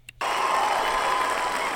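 applause

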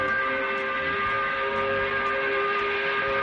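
5 o'clock whistle blowing

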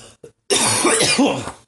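coughing fit

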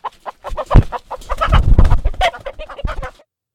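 chicken clucking

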